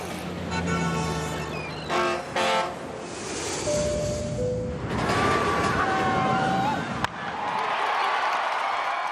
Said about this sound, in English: That was a skyscraper, car, ship, plane, roller coaster, and a ballpark.